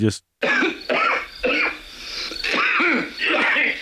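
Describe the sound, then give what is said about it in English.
A voice imitates a man's harsh, hacking cough heard in a lobby about 20 feet away: a rapid series of rough, raspy bursts with throaty vocal squeaks, loud and continuous for several seconds after a brief gap at the start. “But still, just one of those just hacks.”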